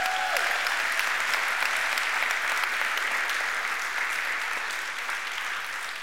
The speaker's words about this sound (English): Golly bum, that's the easiest applause I've ever gotten in a sermon before.